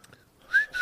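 A person whistles two short, clear tones, the second steady and sustained, with breathy air around each note and no talking.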